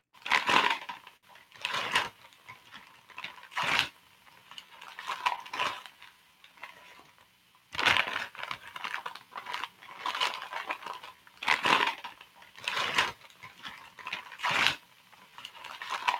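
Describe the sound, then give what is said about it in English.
Crinkly, tearing bursts of paper come in irregular loud rips with quieter rustling between them, as wrapping paper is torn off a present being unwrapped. No one speaks. “No, if it was wrapping a gift, that was unwrapping a gift. Yes, there it is. Ripping the present open.”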